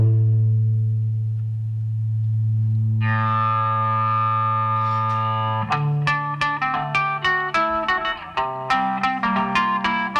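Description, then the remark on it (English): A song's instrumental intro riff, heard in the stereo mix, opens with a sustained, distorted drone. A brighter layer swells in partway, then a rhythmic run of sharp, repeated plucked notes takes over. There are no vocals, and the mix carries a light echo. “Let's hear the intro in the stereo mix, and again in the 2023.”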